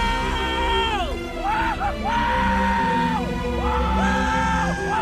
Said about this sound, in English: That was a lot of yelling. It was.